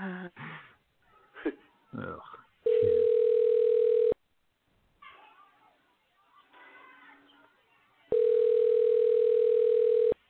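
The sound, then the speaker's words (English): Two long, steady electronic ringback tones from an outgoing phone call to Colton's, separated by a pause of several seconds. Faint rustling and muffled background sounds fill the gaps between the rings. “I gotta make one more phone call since he took a shot.”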